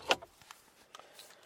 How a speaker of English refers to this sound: So with that, let me just take the keys out of the ignition.